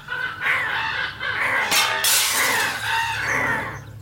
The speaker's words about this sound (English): Soon the entirety of the parking lot was swallowed by the legion of birds. The truck was gone. The world was gone. All replaced by a mass of black feathers. Glass exploded from the window and door, and they poured inside, cawing in the same beat.